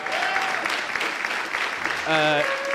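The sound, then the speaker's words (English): A crowd claps steadily in a dense, even wash of applause for the performer's younger brother as he is introduced, with a few cheers and whoops rising over it, including a sustained pitched shout near the end. “And he doesn't say much, but you should clap for him.”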